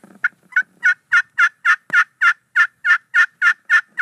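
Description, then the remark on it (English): A hen turkey yelps over and over, about a dozen evenly spaced, raspy mid-pitched notes in a steady, insistent rhythm, loud and alone without any talking. “Now, maybe if she comes off the roost or she's in the fall assembling her flock, she'll stand there and just, you know, just.”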